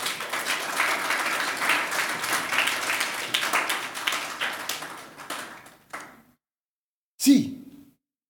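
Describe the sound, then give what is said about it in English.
A church audience claps their hands during a sermon in a dense, steady burst of applause that thins out and stops after about six seconds, followed by a short vocal sound. “Oh, you can clap your hands.”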